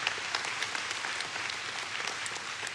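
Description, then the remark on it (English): An audience claps again in thanks for people's work, a dense, steady wash of applause, many hands overlapping with bright crackling bursts throughout, no voices standing out. “Yeah, you can clap again. We can clap for that again.”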